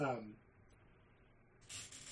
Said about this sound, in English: Oh, sneeze. Bless you.